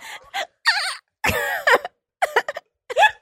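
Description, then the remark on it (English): A voice imitating coughing: a series of short, rough bursts with a raspy, throat-clearing quality, moderately loud, separated by brief pauses. “Or you just hear a cough.”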